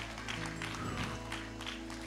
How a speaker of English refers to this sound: Give him a praise clap this morning. Come on, can we give him one clap?